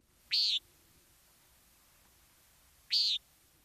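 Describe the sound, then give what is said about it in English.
Two short, nasal, buzzy calls of a common nighthawk, also called bull bat, ring out about two and a half seconds apart, clear against a quiet, faintly hissing background, on a hot, humid summer morning in August. “But even in these withering dog days of August, there are birds to be seen and heard if one wants to forsake the air conditioning. Because the bull bats are about.”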